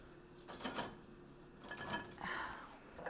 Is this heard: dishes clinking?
yes